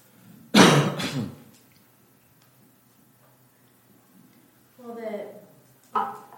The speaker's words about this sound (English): I don't know, I coughed.